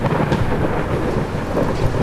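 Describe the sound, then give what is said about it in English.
Heavy, steady downpour of torrential rain with a deep rumbling undertone of thunder, on a pitch-black night on a storm-swept road a few miles out of town, dense and loud throughout with no voices. “A pitch black night. A storm swept road a few miles out of town. Torrential rain that had soaked me to the skin in seconds.”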